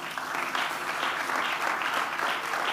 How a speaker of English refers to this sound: Close your eyes and put your hand on your heart. You can clap before you do that.